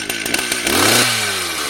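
A chainsaw sputters a few times, then revs up into a loud, close, rising whine that holds steady with a gritty buzzing edge.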